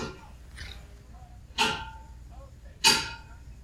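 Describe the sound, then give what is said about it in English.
Two loud metallic clanks, each with a bright ringing tail, stand out over a low rumble, with fainter knocks between them, like pots and pans being stacked away; the noise is made by a radiator as it comes on. “It sounds like someone is putting away pots and pans in your kitchen.”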